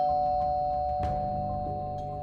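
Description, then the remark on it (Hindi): A doorbell rings with a steady, sustained electronic tone, joined by a sharp strike about halfway through and a softer one shortly after. No one speaks. “शालिनी तौलिए से मुंह पोंछ ही पाई थी कि दरवाजे की घंटी बज गई।”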